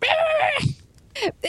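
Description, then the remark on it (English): A small dog whimpers in a long, high whine, then after a brief pause gives two short, sharp yips with falling pitch, fairly loud. “Dogs.”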